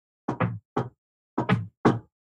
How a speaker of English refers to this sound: So Winnegar kind of just does the secret knock, I guess, for the door.